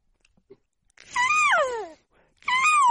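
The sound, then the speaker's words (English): A cat lets out a long, drawn-out meow with a falling pitch, then starts a second meow after a short pause; fairly loud, with no talking. “Kitty, kitty, kitty, kitty.”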